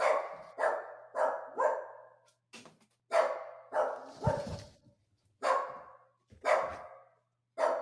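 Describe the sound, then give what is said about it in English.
A dog barks repeatedly in short, sharp bursts, around ten loud barks in an uneven rhythm with brief pauses, with no talking. “There you go. The wolf.”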